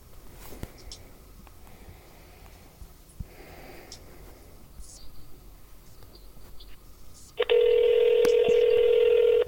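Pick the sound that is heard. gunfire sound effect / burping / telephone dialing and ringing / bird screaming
telephone dialing and ringing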